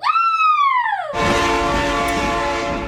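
A loud train horn blares with a slightly falling pitch, then cuts into the heavy, roaring clatter of a passing train as a steady tone hangs over the rumble. No one speaks.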